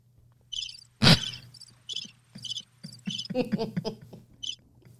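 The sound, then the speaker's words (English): Crickets chirp in short, evenly spaced bursts, about eight or nine in a row, over a faint low hum, with one sharp thud near the start and a soft rustle midway. “Not major crickets for that. It's major crickets.”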